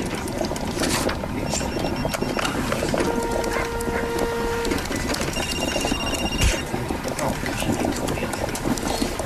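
An office coffee machine bubbles and gurgles steadily over a constant mechanical hum, with a few sustained electronic tones and scattered clicks breaking through the busy texture.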